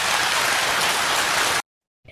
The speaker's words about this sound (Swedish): Lägg märke till att under detta korta klipp var det tre mycket rungande applåder ifrån den, får vi förmoda, kristna publiken.